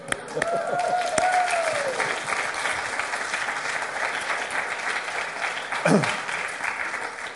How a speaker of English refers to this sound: Do you know what? I thought you were going to start clapping for a minute and I was going to join in.